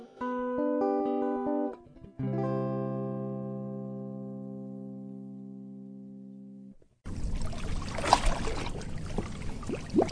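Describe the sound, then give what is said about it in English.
Sustained electronic-sounding tones give way abruptly to water lapping against a rowboat while someone fishes from it, a steady wash of sloshing with a few sharper splashes, and no voices. “Come join me in the boat.”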